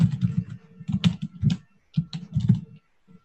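Busy typing on a computer keyboard right next to the microphone: bursts of rapid clacking keystrokes with brief pauses between flurries, loud and near, with no voices.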